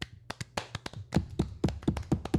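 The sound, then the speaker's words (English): A short burst of hand clapping, quick sharp claps in an uneven, slightly overlapping rhythm, growing a bit louder and steadier toward the end, with no talking. “We need a clap button.”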